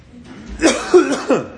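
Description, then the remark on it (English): Three quick coughs in a row, each a short rough burst with a brief pause between, fairly loud against a quiet background with no talking. “I'll cough, and then we'll read.”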